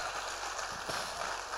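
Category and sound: crowd, audience clapping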